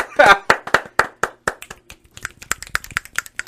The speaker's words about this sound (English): Just real quick, clap it up.